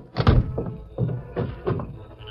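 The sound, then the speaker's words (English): A sheriff slams a heavy office door shut behind him as he leaves, a loud, booming thud followed by a few softer knocks and rattles that die away over the next two seconds. “And a moment later, slammed the door behind him.”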